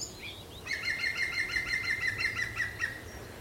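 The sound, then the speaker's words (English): A green woodpecker's yaffling call: a rapid, laughing series of about a dozen evenly spaced, ringing notes lasting a couple of seconds, clear over faint outdoor background, in an area with many ant hills. “Green woodpecker yaffling.”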